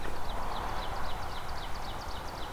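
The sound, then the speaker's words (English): An ovenbird, a warbler species, sings a steady run of repeated, high chirping phrases that carry over a constant wash of rustling background noise. No one speaks. “So as you might be able to hear there is oven birds here. That's another warbler species here.”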